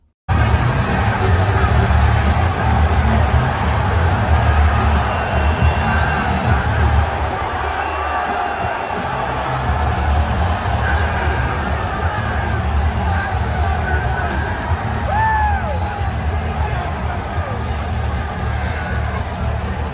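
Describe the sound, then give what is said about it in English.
A large arena crowd at a fights event roars and cheers steadily as DJT walks out with Dana White, a dense wall of voices with scattered shouts and a few whistles, dipping slightly in the middle before swelling again. “I mean, the crowd was showing love the entire night.”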